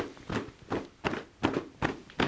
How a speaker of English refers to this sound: So along the outside and back of the legs, tapping down the legs, and then back up the inside and front of the legs. Just re-energizing the body as you go up and down.